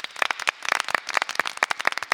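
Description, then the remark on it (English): A round of applause on a cruise as it sets sail: many hands clapping in a dense, irregular patter of sharp, bright claps that keeps up steadily for the whole stretch, with no voices. “Let's give a round of applause to each other for setting sail on the first cruise that has departed since this time last year.”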